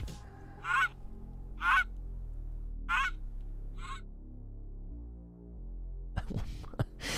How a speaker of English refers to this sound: Sorcerer had the gall to send me a goose. Can you hear it?